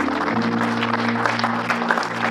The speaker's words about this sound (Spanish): ¡Eso! Un aplauso al Señor.